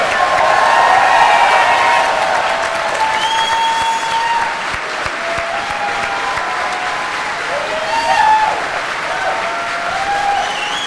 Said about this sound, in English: How about a round of applause for this incredible cast?